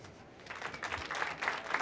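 An audience breaks into applause as a guest from IndieWire is introduced to the stage at an IndieWire talk at the Apple Store in Soho; the clapping swells after a brief quiet moment into a steady, dense patter of many hands at moderate volume.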